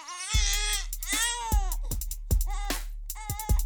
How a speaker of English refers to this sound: The baby screams Jillian awake.